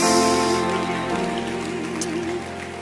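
An audience at a church conference claps their hands in a dense, steady wash of applause, heard over sustained music with a wavering, held tone, at a fairly even loudness throughout.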